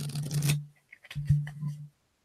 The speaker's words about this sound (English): And I already have them together in my deck, so I had to like shuffle to make sure it's fair.